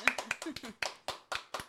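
About ten sharp hand claps, quick and uneven at first with a brief vocal sound mixed in, then settling into a steady, moderately loud rhythm.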